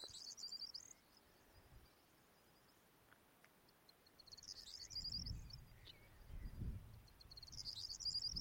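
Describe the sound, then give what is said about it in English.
A corn bunting sings right beside the recordist at Martin Down, between Blandford and Salisbury, on a wet late evening as rain eases, giving three short, jangling high trills with pauses between them, while low wind rumble swells. “There's a corn bunting right beside me. Corn bunting.”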